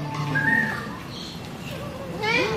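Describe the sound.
A person whistles to call a bird down to their hand, a few clear sliding tones, then a quick run of rising whistled chirps at the end, with faint background noise.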